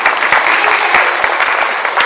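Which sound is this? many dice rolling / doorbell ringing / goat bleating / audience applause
audience applause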